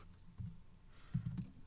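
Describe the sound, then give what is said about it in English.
Quiet keyboard typing by two people writing fan fiction together, a rapid patter of soft clicks arriving in two short bursts with a brief pause between, without any voices. “Oh, well, we're just both typing.”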